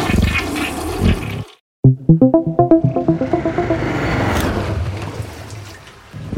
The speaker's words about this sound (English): You just jiggle the handle like this, right? And then you flush.